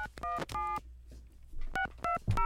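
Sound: telephone dialing tones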